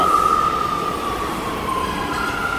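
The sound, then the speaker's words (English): A New York City subway train rumbles along steadily and loudly, with a high metallic whine that slowly slides downward in pitch over the dense roar of the car. No voices. “New York City subway riders love Issues Etc.”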